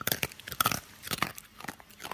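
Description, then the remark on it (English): A series of crisp crunching bites, a crunch sound effect: irregular bursts of brittle crackling about a quarter second apart, like something dry being chewed, with no talking. “can you put in like a version of the crunch sound so everybody can hear what it sounds like?”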